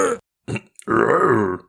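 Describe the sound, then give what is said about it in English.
A voice imitates the guttural grunting of a Moblin monster: a short gruff burst, a brief pause, a quick click, then a longer, drawn-out growling groan with a strained, burp-like rasp. “As far as we know, they don't talk. They go...”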